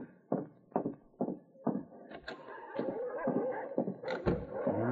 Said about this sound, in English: The dogs, they must have catch a jackrabbit back near the shed. They are snapping over something to eat. The dogs, which usually burrowed into a snowbank alongside the shed, were snapping over the dried caribou